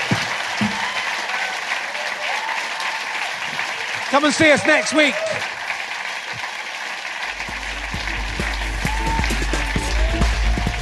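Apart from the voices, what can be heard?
audience applause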